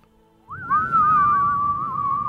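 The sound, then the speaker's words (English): Two people whistle together, a sustained wavering melody that glides upward and holds steady for a couple of seconds, loud over a low rumbling background noise. “when I start whistling, you start whistling.”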